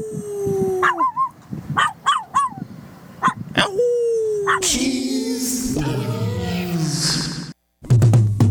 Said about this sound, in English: Can you howl? Do that one more time.